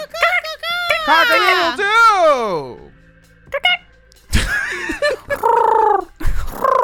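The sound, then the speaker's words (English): A person vocally imitates a rooster's crow: a strained, rising then falling warble lasting a few seconds, followed by brief pauses and then more squawky, throaty vocal bursts. “I don't think you've ever seen a chicken. I think there was a pigeon at the end of it.”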